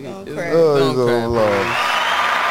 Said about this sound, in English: Oh, I'm about to cry in a bit. I need some applause.